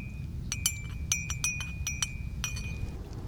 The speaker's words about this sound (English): Here I have some dandelion roots that we grounded, and we roasted, and then we ground it. And we have it right here in my bag. Let me get the boiling water ready. Put it in my mug, and we can make some dandelion coffee.